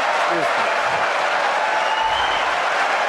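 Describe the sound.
A large crowd cheers and applauds after a one-liner about Rosie O'Donnell answering Megyn Kelly's question, in a dense, sustained wash of clapping and voices that holds steady and loud for a few seconds, with scattered shouts rising above the roar.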